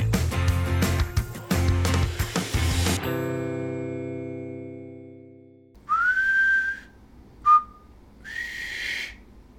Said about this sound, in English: Can't do it. What were you doing? I was trying to do that whistle part